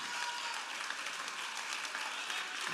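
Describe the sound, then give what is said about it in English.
An audience claps steadily, a dense continuous wash of many hands at even loudness, with no voices standing out over the sustained applause. “Someone applaud and say, I believe.”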